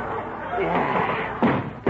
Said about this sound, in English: I'm kicking that cedar chair.